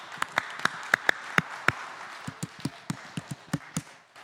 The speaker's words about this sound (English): I clap and you clap back. 我拍手，你也拍手。